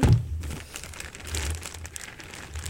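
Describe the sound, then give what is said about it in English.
Crinkly wrapping being unwrapped, a steady stream of soft crackles and rustles with a brief louder thump at the start. No voices. “Oh my god, this feels like a ASMR unwrapping.”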